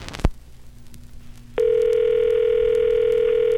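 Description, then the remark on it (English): A short click, then after a moment a steady, unbroken telephone line tone hums at a constant pitch and level for about two seconds until it cuts off, as a phone call is placed. No one speaks. “So I say we give old Mark Chatfield a buzz.”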